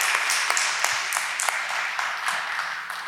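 A group of people applauds, a dense, steady patter of many overlapping hand claps that holds at an even, moderate loudness throughout with no one speaking.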